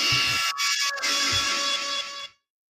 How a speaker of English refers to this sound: Well, the buzzer.